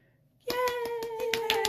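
A quick burst of hand clapping begins abruptly after a short quiet moment, with around eight steady, evenly spaced claps, close and fairly loud, over a sustained tone.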